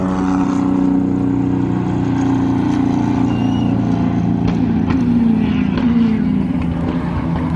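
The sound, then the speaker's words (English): A steady, droning engine hum from several race cars rolling by at moderate speed during a safety car period, a Ford GT among them, their motors blending into a continuous low rumble with slight shifts in pitch as they pass. “Now, you may have noticed a bunch of cars just came by quietly.”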